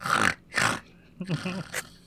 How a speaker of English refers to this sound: Weirdly grateful snoring.